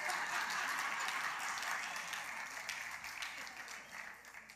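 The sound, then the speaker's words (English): A crowd claps in a dense, steady wash of overlapping handclaps that stays loud throughout and fades slightly near the end, with no speech over it. “I got some clapping on this side.”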